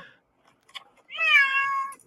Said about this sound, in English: The whole ride over, he just would not shut up. That is the meow of betrayal.